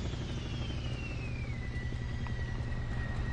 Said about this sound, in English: I hear a helicopter.